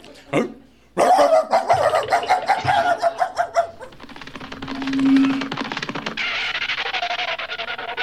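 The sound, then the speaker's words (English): A dog named Rover barks loudly in a rapid, excited flurry of sharp yaps lasting a few seconds, then the barking gives way to a steady rushing, scuffling noise. “Oh, look, here comes Rover. Come on, Rover. Go get the paper boy.”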